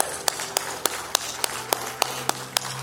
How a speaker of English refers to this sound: Let's clap for Jesus.